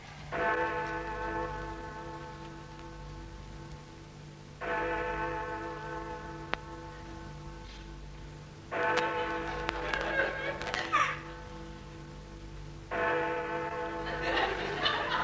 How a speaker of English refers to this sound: God, black ruddy clock. What's the matter, love? Well, how can you sleep with that noise going?